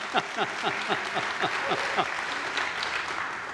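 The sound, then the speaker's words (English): An audience at a worship service at the Village Church applauds after singing the Gloria Patri: many hands clapping steadily in a dense, fairly loud patter with some brief bright whoops rising above the clapping early on. “You almost wanted to clap, didn't you? Okay, you can do that.”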